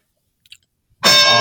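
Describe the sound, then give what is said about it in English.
A bell rings out loudly after near silence, one sharp metallic strike that keeps clanging and sustaining to the end, with no voices. “Ring the bell.”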